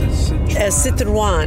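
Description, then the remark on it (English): Steady low engine and road rumble inside a moving small French Citroën diesel station wagon, continuous throughout, with a person talking over the drone. “We are broadcasting from the car.”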